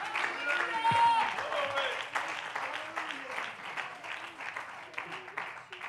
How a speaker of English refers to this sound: Oh, clap your hands and love him. Clap your hands and love him.